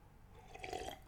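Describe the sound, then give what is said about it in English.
A single quick, soft sip of water from a glass, with a faint wet slurp and gulp lasting about a second and no talking. “Quick sip of water.”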